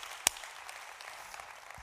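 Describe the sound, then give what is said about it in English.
A church audience applauds King Jesus together, a dense, steady wash of many hands clapping at an even level, with one sharp louder clap standing out near the start. No one speaks over it. “We've clapped a whole bunch, but can you take 10 seconds, applaud King Jesus today?”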